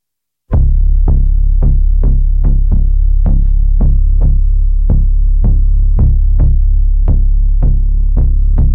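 A hip-hop track plays loudly: a heavy, droning low bass under a steady series of punchy thumps, roughly two per second, with no vocals in this stretch.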